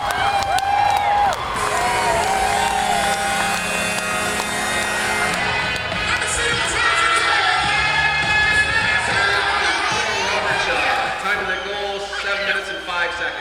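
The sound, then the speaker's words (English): A hockey crowd roars in celebration after a goal that hit the post and went in, during the first game of the Battle of Yonge Street, a dense, loud wall of cheering and whooping that holds steady for the whole stretch with no letup. “It was a beautiful goal, and listen to the crowd celebrate.”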